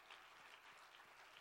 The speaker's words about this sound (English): Why don't you just go ahead and clap your hands? Let's just have a great ball here today.